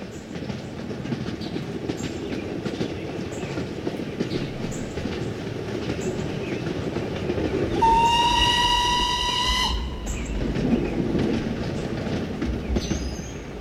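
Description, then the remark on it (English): A train rumbles steadily along the rails, then a long, loud steam whistle blows for about two seconds before the rolling clatter continues on its own. “In the early days of steam engines, when rail lines began connecting distant cities across the country, the train became a symbol of progress and modernity.”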